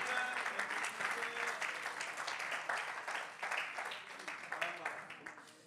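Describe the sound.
A crowd claps steadily during a sermon, a dense wash of many hands applauding at once, fairly loud, with voices murmuring underneath.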